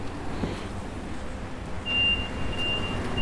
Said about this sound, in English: One second, got a truck here making noise.